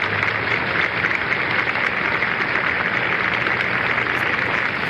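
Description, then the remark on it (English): Steady, dense applause from a large crowd as the resigning US president waves goodbye before boarding a helicopter, a continuous wash of clapping that holds at an even loudness throughout, with a faint low hum underneath and no voices. “And you hear the applause.”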